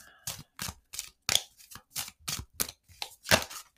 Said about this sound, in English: Let's see what cards wants to come through. A card to wrap up the day. I'm shuffling right now the cards.